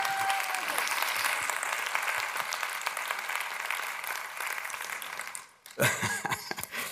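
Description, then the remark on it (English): A sustained wave of audience applause, dense and steady for several seconds, then it cuts off briefly before a short burst of clapping and crowd noise returns, given for the contestants of a mock "Postmodern To Tell the Truth" game show. “Let's give our contestants a round of applause.”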